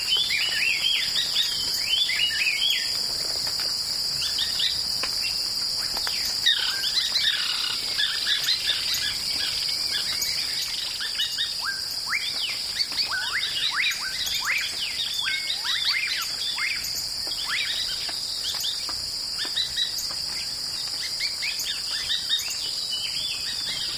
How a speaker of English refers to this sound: This avian soundscape, recorded in a shrubby field, can be found on …